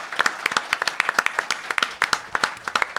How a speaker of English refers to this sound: You all deserve a round of applause. Well done.